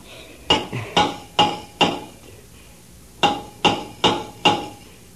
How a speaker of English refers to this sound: It's a rescue diver working on the outside. Take the hammer and answer the signals.